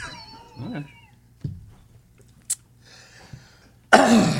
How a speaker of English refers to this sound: You should really get that cough checked out.